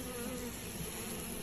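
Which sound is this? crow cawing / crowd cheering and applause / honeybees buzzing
honeybees buzzing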